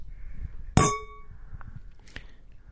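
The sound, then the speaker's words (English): Wine glasses clink together once in a toast with a bright, ringing chime that fades over half a second, followed by a softer, short tap of glass a moment later over low background rumble. “grab your glass of wine there, and let's do a big toast to all the Talking Metal listeners who've made it to episode 100.”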